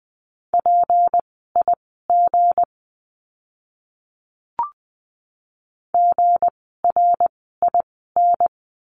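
A single steady mid-pitched tone keyed into short and long beeps spelling a Morse code word at 20 words per minute, from a lesson on the letter g, sent twice with a pause and a small click between, no voices.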